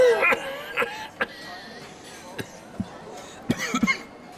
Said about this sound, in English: The witch hunter's nostrils were overwhelmed by the stench, causing him to cough.